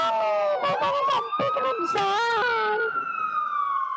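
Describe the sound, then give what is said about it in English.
Emergency vehicle sirens wail continuously over a phone line, several overlapping tones rising and falling loudly, then settling into one steady, slowly sweeping wail. “I can't hear anybody. I just hear sirens on my phone.”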